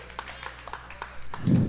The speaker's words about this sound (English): Wow. That's a holiday weekend applause.